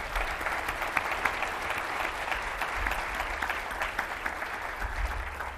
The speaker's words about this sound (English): A warm round of applause also for Dr. James Klotter.